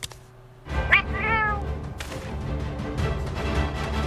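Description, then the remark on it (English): A cat meows a couple of times in quick succession, short rising-and-falling cries heard clearly over a steady, busy backdrop of game-like music and noise, from the video game Monster Hunter World. “Who the hell is this cat?”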